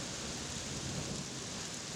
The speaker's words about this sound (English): September 29th, 1938. It's a Thursday, and it's raining in Prague.